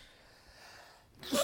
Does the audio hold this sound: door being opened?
no